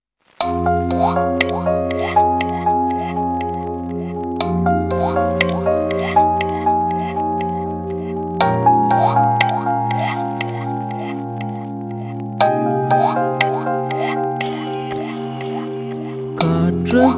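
Instrumental song introduction with steady layered bass and sustained chords, changing every few seconds, topped by bright plucked, droplet-like melodic notes in a flowing rhythm; no voices, moderately loud throughout.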